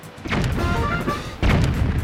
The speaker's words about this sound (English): If you place the King of Red Lions just far enough away from the island, you should be able to make it to shore without drowning, and he should be in range of the cannon. Once you find the right angle, fire away.